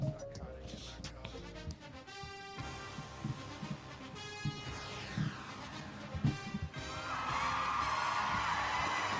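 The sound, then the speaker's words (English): A crowd cheers and whoops over a busy, layered backdrop, with scattered yells and bangs, swelling into a louder, steady roar of cheering over the final couple of seconds. “You hear that crowd cheer.”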